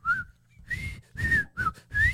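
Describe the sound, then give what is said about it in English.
Someone whistles a short Western movie-style tune, four or five breathy phrases with sliding, wavering pitches and brief pauses between them, no talking. “I'm doing a Western.”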